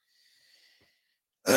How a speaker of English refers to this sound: …, you always coughing on the mic.